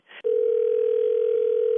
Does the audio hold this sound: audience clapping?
no